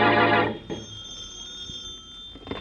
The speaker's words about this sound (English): As we return to our story, Shorty has been released by the police, and in the Bromley home, the phone rings.